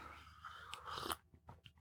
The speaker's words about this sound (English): Another little sip of coffee.